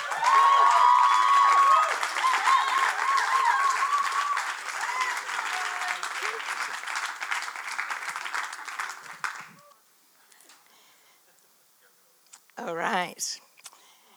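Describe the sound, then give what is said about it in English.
An audience, asked to stand, applauds loudly and steadily for about nine seconds to welcome a speaker to the stage, with a few whoops and cheers early on. The clapping stops abruptly, a short quiet follows, then a single voice briefly speaks. “So I'd love you to stand to your feet and welcome to the stage”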